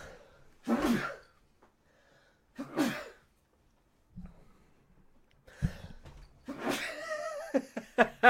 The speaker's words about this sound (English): Sorry, I'm trying not to sneeze.